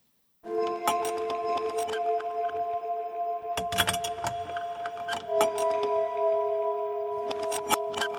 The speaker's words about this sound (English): Like downstairs, the hall was lined with these sort of cabinets, and they had the drawer pulls that would clink up and down. And I heard someone clinking them up and down, and I thought the little girl was up running around 3 a.m.